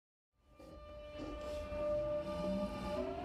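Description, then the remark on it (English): A steady rumble of a train carriage on rails, with low mechanical drone and faint high tonal whines building after a brief silence, continuous; the train is being held at a red signal. “This train has been held at the red signal.”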